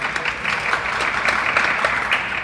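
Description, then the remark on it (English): A light, scattered round of applause from a Fiorina crowd: many soft, irregular claps blending into a steady patter at moderate volume, with no voices over it. “That was a slightly less light smattering.”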